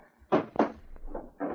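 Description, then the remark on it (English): A wooden drawer is handled and slid shut as an unloaded gun is put back in it, a few short scraping knocks and thumps in quick succession with no one speaking. “Then he took the third gun, emptied its chamber, and replaced it in the drawer.”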